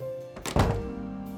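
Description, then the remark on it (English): The door to Devin and Bryn's house is pushed shut with a single dull, heavy thunk, followed by a brief low rumble that fades under a steady background hum. “I'll shut the door to Devin and Bryn's house so she doesn't accidentally fly back out.”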